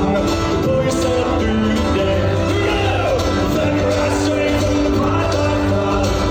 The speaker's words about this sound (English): And you hear when it kicks in. Entire crowd singing.